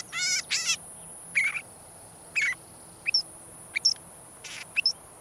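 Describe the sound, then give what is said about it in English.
A northern shrike, also known as the butcher bird, sings a varied series of short, squeaky and buzzy phrases spaced by brief pauses, clear, with no other sounds. “and listen for the butcher bird's innocent-sounding song.”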